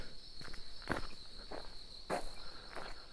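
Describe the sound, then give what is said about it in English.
Around five footsteps crunch at an unhurried, slightly uneven pace as someone walks through a state park in the middle of the night, while a steady, high-pitched chorus of crickets drones underneath the whole time. No one speaks. “I'm just taking this all in as I'm walking around.”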